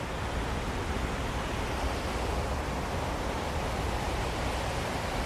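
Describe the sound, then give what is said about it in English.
A steady, unbroken roar of rushing water cascading into a memorial fountain pool at the World Trade Center site, dense and holding at an even loudness throughout with no voices or other sounds. “Water is very special. It's like holy water.”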